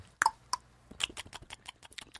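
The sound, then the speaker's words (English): Loud chewing with wet smacking and clicking mouth noises in a quick, uneven rhythm, a few sharper pops near the start, and no talking. “You don't love chewing, do you”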